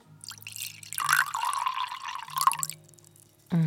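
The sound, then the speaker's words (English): Liquid pours into a glass in one steady stream lasting a couple of seconds, its gurgling pitch rising slightly as the glass fills. A few soft drips come first, and a voice starts right at the end. “In fact, I will pour a little glass of happy water.”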